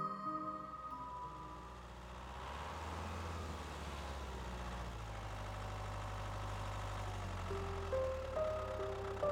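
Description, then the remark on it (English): A rickety tractor engine idles in the middle of pumpkin fields, a steady, low chugging rumble that holds throughout, with thin tonal whines drifting above it and no voices. “The rickety tractor slowed to a stop in the middle of the pumpkin fields.”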